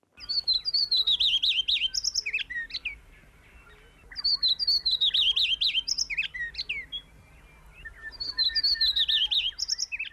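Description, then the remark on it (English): A shy heath wren, a bird of Australian mallee dry woodland, sings three times, each burst a rapid, tumbling run of high, sweet warbling notes lasting about two seconds, separated by short pauses with faint background hiss. “And we'd practically only just started the recording when John and Fiona were quick on the buzzer, texting in from Katoomba to say correctly that that sound we heard is the call of the shy heath wren.”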